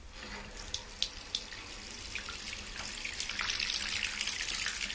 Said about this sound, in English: It calls itself Doctopus Matey Bubble Bath, and it changes colour in the bath. All right, then, well, let's run a bath and get it tested out.